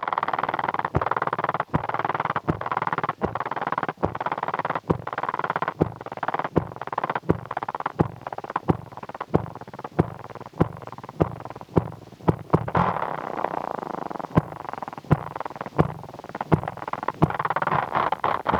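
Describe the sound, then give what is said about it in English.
A spider's courtship vibration song: a steady, low purring drone broken by sharp, evenly spaced clicks roughly every half second, continuing throughout with no voices. “It almost sounds like a cat purring. Yeah, or a motorcycle.”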